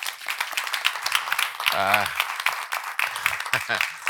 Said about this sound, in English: I think we can give a round of applause for our panelists.